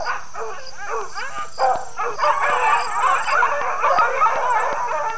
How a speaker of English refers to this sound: Common folk use dogs, or specifically hounds, to hunt a hare or other small animals by having them sight and run after the target.